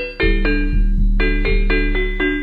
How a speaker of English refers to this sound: All right. Too many bells. Too many bells in all this music. What is that called? The steel drum? That sounds very much like the steel drum.